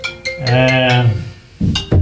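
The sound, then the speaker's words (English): A mobile phone rings with a loud ringtone: a long, low, moo-like tone over a quick run of high bell-like pings, then two shorter bursts. No one speaks. “Now we have, let's put that phone away to answer it later now.”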